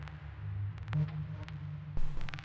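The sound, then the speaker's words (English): A quiet, reverberant wash with a boxy, honky midrange tone sits over a steady low hum, broken by a few sharp clicks and a louder burst near the end; no voices. “So that's the 1 kilohertz, boosted all the way up.”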